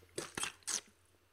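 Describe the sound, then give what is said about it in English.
Water is poured from a bottle into a cupped hand in three quick, hissy splashes, with a faint crinkle of plastic between them and no voices. “Right here, I've just poured a little bit of water for you on the podcast into my palm, just out of this bottle.”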